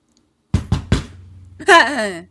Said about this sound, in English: She hears like a pounding at the door.